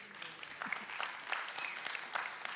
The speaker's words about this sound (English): yeah, you can clap, give the Lord a hand.